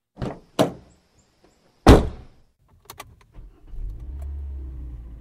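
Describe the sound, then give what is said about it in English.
A car door clicks open, then slams shut with a heavy thunk as someone gets into the car, followed by small rattles and a low engine-like rumble settling in. No one speaks. “The detective grabs the reports and his coffee and goes to his car, where he quickly scans the files.”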